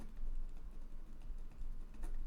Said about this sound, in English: It's hard to write on a piece of paper while holding it down with your hand.